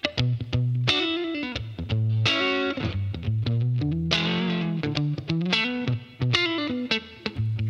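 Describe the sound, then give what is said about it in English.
Distorted electric guitar, sent through a wireless transmitter plugged into the guitar and heard via headphones that supply the tones, plays a steady, driving riff with chugging low notes and brighter chord stabs, heavy with effects and loud throughout, with no talking. “It's basically a wireless guitar transmitter. You plug it into your guitar.”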